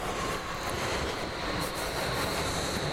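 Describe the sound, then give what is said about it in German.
A train rolls past with a steady, dense roar of rumbling wheels, a thin high-pitched squeal faintly riding above the noise for the whole stretch, with no voices. “Hallo Zoch. Quietsch, quietsch.”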